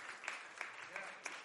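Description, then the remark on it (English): A crowd claps its hands in a dense, steady patter of applause, with a few sharper claps standing out at roughly regular intervals. It holds at a moderate level throughout, with no clear talk on top. “Can you just clap your hands for that?”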